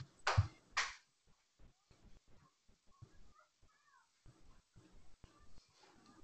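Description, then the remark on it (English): Two sharp, loud barks burst out in quick succession, followed by quieter scattered yips and whimpering noises from Holly's dogs as she takes care of them. “Holly's taking care of her dogs.”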